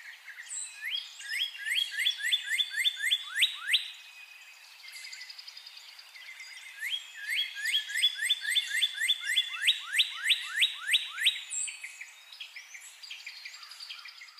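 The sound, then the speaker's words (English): A male northern cardinal sings two bursts of rapid, repeated down-slurred whistles that run into quick trills, loud, with faint chirping from other birds or insects in the background. “And whereas the male usually sings a song of down slurs and two-parted whistles ending in a trill, that kind of cheer, cheer, cheer, birdie, birdie, birdie.”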